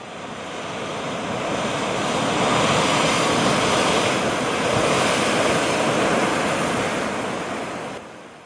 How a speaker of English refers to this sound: he saw the last of the land, a frightful range of rocks behind them, and his ears were deafened by the thundering of water as it rolled and roared and raged among the dreadful caverns it had worn, and fiercely tried to undermine the earth.